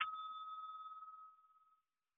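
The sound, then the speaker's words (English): A single bright ding of a small bell, rung after a pun is read out, struck once with a sharp attack and a clear ringing tone that slowly fades out over about two seconds, with no voices. “After each pun, I'm going to ring the bell.”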